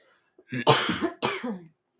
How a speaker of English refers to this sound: Sorry about all the coughing, you guys.